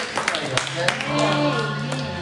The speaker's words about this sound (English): Let's go give the Lord a hand clap. Praise the Lord.